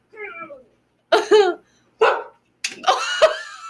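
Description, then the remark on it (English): The speaker's dogs bark and yelp in several short bursts separated by brief pauses while being told to get out of the room, ending in a longer run of overlapping, high-pitched barking. “My dogs are so dramatic right now.”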